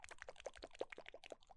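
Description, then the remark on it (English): Headphones knock and rub against a microphone, making a rapid, uneven string of soft thumps and rustles that almost sound like bubbling. No one speaks. “But regardless, I'll just headphones hit the mic.”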